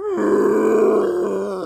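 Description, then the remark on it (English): A dinosaur-like T. rex roar: one loud, sustained, growling bellow with a rough, harmonic, mid-low pitch, holding steady for under two seconds with no speech. “Inches away from your nose, powerful jaws roar open.”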